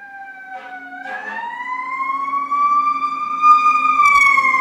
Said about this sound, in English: And sending love and compassion to wherever that siren is going. May they be free from their suffering.